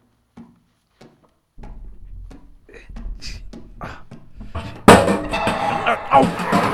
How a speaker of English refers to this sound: It's coming back. It's knocking over all the boxes to get to us.